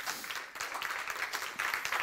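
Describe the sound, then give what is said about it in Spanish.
A church audience applauds the Lord together at the end of a service, a steady, dense wash of many hands clapping at once, fairly soft in level and continuous for about two seconds with no voices on top. “Da un aplauso al Señor.”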